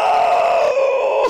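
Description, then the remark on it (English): A person imitates a pained groan turning into a scream: one loud, sustained strained wail lasting about a second, pitch sagging slightly before it cuts off abruptly. “Just like screaming and being like, I don't know what to do. I was in so much pain.”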